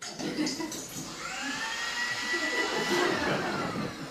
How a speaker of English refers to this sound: A blender?